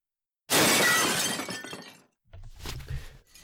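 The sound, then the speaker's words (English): A window pane suddenly shatters with a loud, bright crash, glass spraying and tinkling for over a second, followed by the softer crunch and clatter of fragments settling. “Careful, with the broken glass.”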